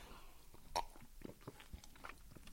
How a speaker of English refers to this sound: I have a sip of water, which is also a goal.